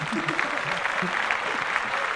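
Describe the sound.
A crowd claps steadily in a dense, even patter, with a low murmur of voices underneath throughout the short burst.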